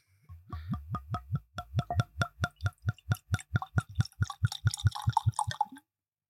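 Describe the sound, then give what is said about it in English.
A steady run of hollow glugs as whiskey pours from a bottle, about twenty gulps at a fast, even rhythm, growing bubblier and more splashy toward the end, with no talking. “Because the bubble like, started oh before it even God, started pouring, that, dude.”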